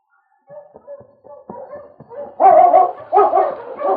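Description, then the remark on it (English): Sled dogs of a dog team yip and whine softly at first, then break into loud, excited barking that overlaps in a noisy chorus. No one speaks. “I'll go get that dog team and sled.”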